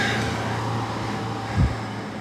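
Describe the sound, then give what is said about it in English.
A car driving past a property, a steady wash of road noise over a low engine hum, with a brief low thump near the end. “That wasn't them, that was just another car going past the property.”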